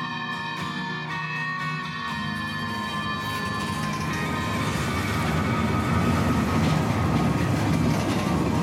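A train carriage heading eastbound rumbles steadily along, a dense low roar with faint rhythmic clatter and sustained metallic tones on top, growing slightly louder over the span without pause or speech.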